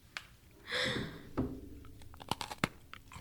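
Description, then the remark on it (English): A person takes a crisp crunching bite into a hard dog treat, followed by several sharp, crackly chewing snaps in quick, uneven succession, heard alone without talking. “That crunch.”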